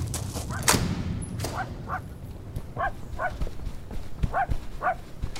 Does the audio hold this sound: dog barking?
yes